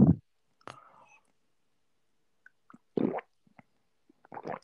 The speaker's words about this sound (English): Let me get close up to my microphone and drink my water. What's that thing called? RS? What's it called? ASMR. Yeah, let me put it right close to me, this. And drink my water.